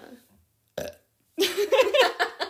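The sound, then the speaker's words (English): A long, loud, rumbling burp rolls out after a brief short sound, drawn out with a voiced, croaky quality and no talking over it. “How about not burping on a podcast?”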